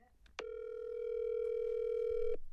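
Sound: phone call ringing tone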